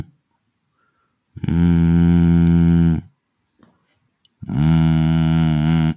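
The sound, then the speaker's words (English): Two long, loud, low moos, each lasting well over a second with a short pause between, voiced by a person imitating a cow. No other talking is heard. “I think a cow's walked in.”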